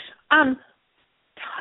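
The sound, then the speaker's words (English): One short, harsh cough bursts out close to a phone mouthpiece, sounding thin and telephone-filtered, with brief bits of voice just before and after it. “I'm sorry, I keep coughing right into the phone.”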